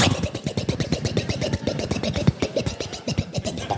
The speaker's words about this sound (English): I'm going to start up the boat. Here we go.